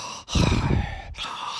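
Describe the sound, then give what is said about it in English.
A voice mimics heavy breathing: a long, rough exhale followed by a short pause and another drawn-out breath, loud and breathy with no words, imitating a man in a car in the film Death Becomes Her. “and she's like, will you just stop breathing?”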